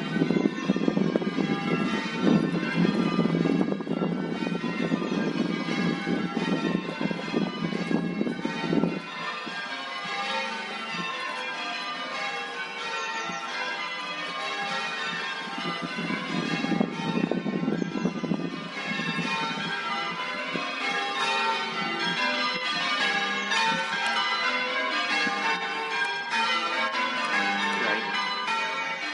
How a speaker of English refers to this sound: the ringing of bells was intended as a way of calling people from whatever else they were doing, whether it was in from the fields, or being busy with housework, or with their children, or whatever it may be, to come together as God's people to pray.